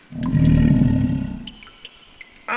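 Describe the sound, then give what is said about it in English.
A deep, rumbling creature growl, heard nearby, swells loudly for about a second, then trails off into scattered faint clicks before a brief higher-pitched tone cuts in at the end. “There is some sort of nearby growling.”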